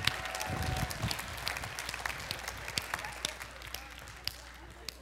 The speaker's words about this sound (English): There was not a man in this room clapping. Do you notice there's a difference? Because when guys clap, we got like heavy hands. When women clap, it's pretty. When I said that, there were just like pretty claps.